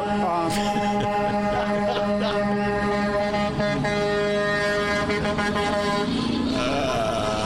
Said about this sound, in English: All those horns honking of support.